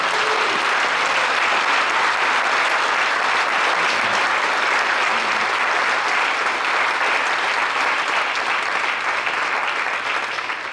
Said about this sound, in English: All right, I invite your applause as well for these people.